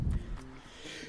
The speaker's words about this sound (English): Bless you. I knew it was coming.